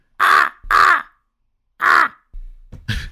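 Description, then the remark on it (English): A voice imitates a crow with three loud, harsh caws, two in quick succession and one after a pause, followed by a couple of softer, rougher croaks. “Crow.”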